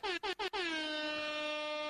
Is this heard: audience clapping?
no